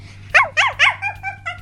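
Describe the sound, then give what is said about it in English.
A dog named Boom barks at a creature in a quick run: three loud, sharp barks, then several shorter, quieter yaps, over a faint steady low hum. “All right, so Boom runs forward, slams into this creature once. It becomes visible, barks at it.”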